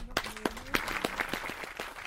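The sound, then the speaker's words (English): Applause from guards sitting in the front row at a show, made of distinct, sharp claps in a fairly steady rhythm, about four per second, moderately loud, with a faint low voice-like hum running underneath. “and soon they were putting on all manner of shows, pantomimes, musicals, murder mysteries, and their guards would even sit in the front row and applaud.”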